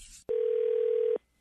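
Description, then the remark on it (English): A telephone dial tone starting a Jubal phone tap call on Moving 92.5: one steady, loud, mid-low hum that starts abruptly, holds unchanged for just under a second, then cuts off cleanly, with only faint hiss around it and no voices. “It's another Jubal phone tap.”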